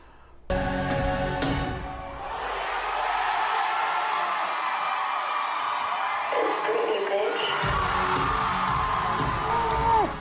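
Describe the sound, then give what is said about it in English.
A large concert crowd shouts together in unison, a dense roar of many voices chanting a short phrase before the singer performs a song, loud and sustained with whoops and cheers rising over the din. “the whole crowd does it every time before she goes and does …”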